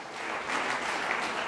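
An audience clapping their hands together, a dense, steady wash of applause from many people at once, sustained and fairly loud throughout with no voices standing out.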